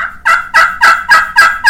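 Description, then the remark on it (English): A friction pot call sounds a quick run of six loud, raspy turkey yelps, evenly spaced, with no voices over them. “That's your yelp. The cluck. And the purr.”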